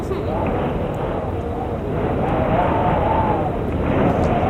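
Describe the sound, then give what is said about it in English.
A drafty door's hinge creaks in a long, wavering, slowly rising and falling squeal, half-buried under a steady, loud rumbling wash of noise that runs through the whole clip. “Close that crusty door. Sounds so crusty.”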